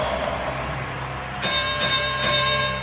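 A bright bell, rung to mark a 30-point milestone during a Utah Jazz basketball broadcast, rings out about three times in quick succession, its tones lingering and overlapping, after a stretch of steady background noise with no one speaking.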